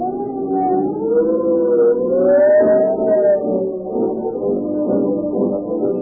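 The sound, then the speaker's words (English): A police siren wails steadily, its pitch sliding slowly up and back down over a low rumbling background, loud and continuous with no one talking. “Every police car that speeds past you, the siren squeaking, it is the medical advertisement for Rio Grande Cat Gasoline.”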